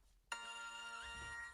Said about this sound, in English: You want to test your buzzers? Everyone cool? Let's see.